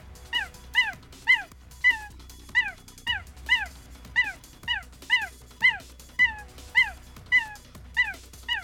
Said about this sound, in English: When reached for comment, one of the macaques had the following to say.